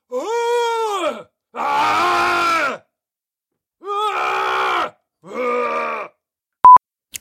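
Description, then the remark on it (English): A person imitates howling, giving four drawn-out, wavering vocal howls with pauses between them, rising and falling in pitch, followed by a brief steady electronic tone at the end. “I'm going to give you some howls.”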